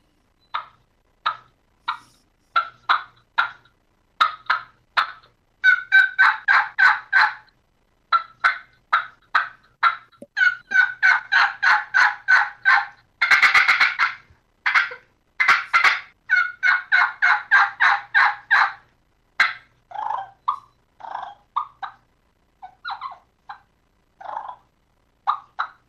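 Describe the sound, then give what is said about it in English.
Turkey calls made on a yellow venom mouth diaphragm call: sharp, rapid cutting bursts mixed with clucks and runs of yelps, loud, with short pauses and no talking. “But this is a yellow venom. I'll do some cutting, clucking, yelping.”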